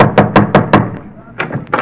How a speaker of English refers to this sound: Here we are. Knock on the door.